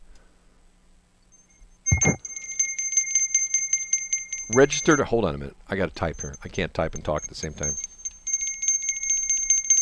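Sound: bell ringing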